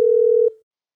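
A steady, clean telephone dial tone hums for about half a second as a phone call is placed, then abruptly cuts off and fades into silence. No voices are present.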